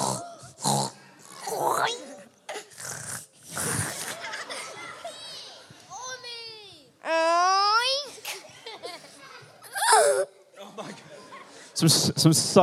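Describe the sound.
Several voices snort, grunt and let out long, high, wavering squeals in imitation of pigs, with bursts of giggling and chatter between the loud oinks.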